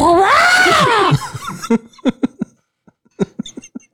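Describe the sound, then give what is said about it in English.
A person in a studio imitating a dinosaur gives a loud, dinosaur-like screech that rises and then falls in pitch over about a second. A rough, breathy burst follows, then a scattering of short, sharp clicks and chirps. “According to Maria, the bird pecked at her rooftop and at the windows before flying away and letting out a loud, almost dinosaur-like scream.”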